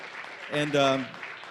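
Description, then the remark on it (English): A church audience applauds to welcome a speaker coming forward to deliver a word, a steady wash of clapping across the whole moment, while a voice briefly calls out over it in the middle before the clapping carries on. “Let's give him a round of applause, really, the Lord.”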